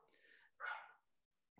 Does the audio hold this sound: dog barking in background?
yes